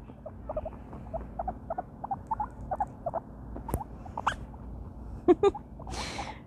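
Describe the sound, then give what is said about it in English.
A guinea pig named Sprinkles chewing on cords: a quick, steady run of small squeaky nibbles, punctuated by a few sharper clicks and ending in a short rustling burst, with no one talking. “She's chewing on cords.”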